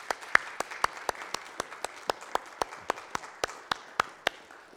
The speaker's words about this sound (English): So we do want to show and express our appreciation. Let's do that, but just a wee round of applause.